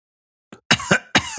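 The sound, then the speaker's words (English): Two pairs of coughs, each pair a sharp, loud burst followed by a second hack, after a faint short catch of breath, with no talking. “Cough and turn your head.”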